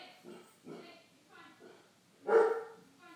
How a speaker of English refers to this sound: And hold on. I've got dogs.